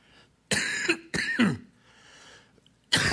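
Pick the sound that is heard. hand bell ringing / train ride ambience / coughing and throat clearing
coughing and throat clearing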